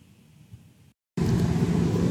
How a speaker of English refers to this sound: I'm just sitting in the car